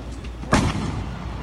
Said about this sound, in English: See, the first gunshot goes off, and I think everyone's reaction immediately is like, wait a minute, guns aren't allowed here. What's that noise?